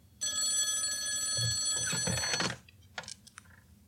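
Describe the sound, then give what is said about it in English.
A studio's emergency telephone bell rings loudly in one continuous burst for about two seconds, then cuts off, followed by a few faint clicks like a receiver being picked up. “Listeners, that's my emergency lurking studio's phone. I have to answer it.”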